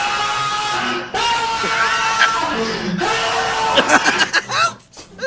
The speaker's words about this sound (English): That's horrible. We fucking figured out where that scream came from, which is the funny part. Where's it come from? It comes from a porno.